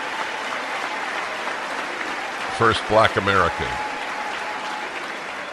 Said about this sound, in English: This is the massive cheering for Hakeem Jeffries,